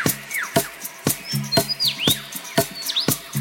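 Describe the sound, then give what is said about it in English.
A male bird, singing to outsing his rivals, delivers a varied, mimicking song that works in other sounds heard in the forest: sharp repeated clicks, swooping down-slurred whistles and brief high notes, in a quick uneven rhythm with no voices. “He also, in his attempt to outsing his rivals, incorporates other sounds that he hears in the forest.”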